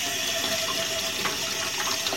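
A ghee spoon is rinsed under a running tap to clean it off: a steady, hissing stream of water with faint clinks and splashes as it hits the metal, continuous throughout without any talking.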